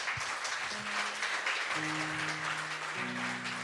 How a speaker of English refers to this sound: Can you just give him a round of applause?